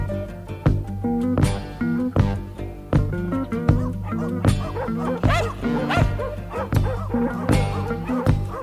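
many dogs barking

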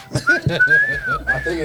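people whistling

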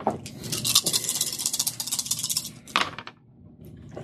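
dice being rolled

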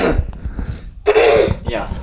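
throat clearing

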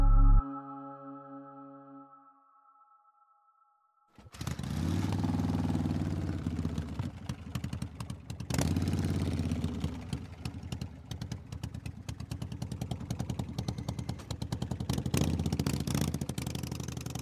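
motorcycle engine idling

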